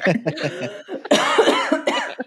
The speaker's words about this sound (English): She, I'm sorry, the almost made me go into a coughing fit.